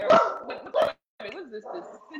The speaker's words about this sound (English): Someone's knocking at the door, so the dogs are barking now. I was going to say even Bella was mad about that. That was Bella telling Illinois to shut the hell up, y'all.